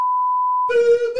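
A steady, high-pitched censor bleep holds for just over half a second, then cuts abruptly into a lower, buzzy, voice-like tone that lingers briefly.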